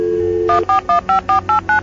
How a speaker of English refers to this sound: I pulled out my mobile phone and started dialing.